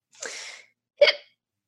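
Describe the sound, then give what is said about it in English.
A fairly loud hiccup: a breathy intake of air followed by a short, sharp voiced burst, alone with no talking around it. “Excuse me, the hiccup.”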